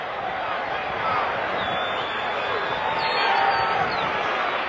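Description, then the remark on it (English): A huge stadium crowd roars and cheers in a steady, dense wall of noise that holds at a constant loud level throughout, with no single voice standing out, during an American football game as Birmingham has first down and goal to go. “Crowd is huge and cheering.”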